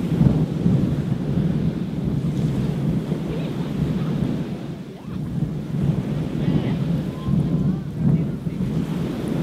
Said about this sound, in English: The rhythm of the ocean waves crashing isn't quite at dance music pace, but it's a good one, and steady.